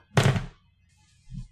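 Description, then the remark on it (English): Dice are rolled for a shadow check in a tabletop role-playing game: a loud, broad clattering burst lasting under half a second, followed after a pause by a single softer, low thud. No one speaks. “So that means we're going to roll shadow for it.”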